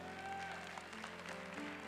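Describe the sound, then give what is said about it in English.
A crowd of the Kingdom Life Embassy audience claps steadily, a dense patter of many hands, with a faint musical hum sustained underneath. “You better be clapping your hands then.”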